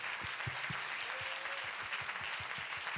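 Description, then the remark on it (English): An audience claps its hands in a steady, dense burst of applause, with many overlapping claps forming a continuous crackle and a few sharper individual claps standing out. “That deserves a good hand clap.”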